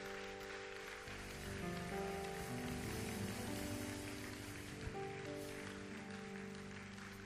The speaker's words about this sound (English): Somebody clap your hands. Do it better. Keep clapping your hands. Give God praise. Give Him glory. Hallelujah. I'm sure you can clap your hands better than this. Let's clap our hands.